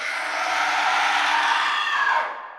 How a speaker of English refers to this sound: Metalia begins to twist on the throne in severe pain. Beryl and the generals of the Dark Kingdom rush over instantly. Queen Metalia! Metalia throws her head back in a scream.